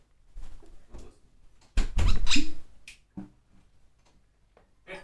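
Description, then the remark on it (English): A female dog interrupts a conversation with scuffling, clicking noises: a few scattered ticks, then a louder rustling burst lasting about a second, followed by faint taps and a final short click, with no one talking. “My dog interrupted us to see how interested she was.”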